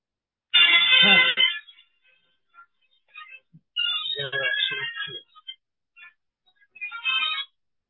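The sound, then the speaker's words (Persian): A phone ringtone plays in three bright, tonal bursts separated by short pauses, fairly loud, with some voice-like sounds mixed into the middle burst. “این تلفن ما بیچر بیاد مواقعی که نباید زنگ بزنه زنگ بزنه”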